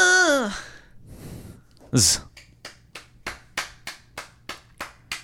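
A brief vocal sound and a breathy sigh, then a sharp smack followed by a steady run of about ten close claps, evenly paced, as a couple of people applaud.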